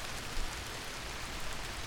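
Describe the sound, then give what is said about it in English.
Steady rain falls in a dense, even hiss, a continuous wash of drops pattering on a surface with no pauses or voices, moderately soft. “Like usually I've got three conversations and a mediocre sitcom running inside my head all at the same time, but all just turns off for the sound of rain.”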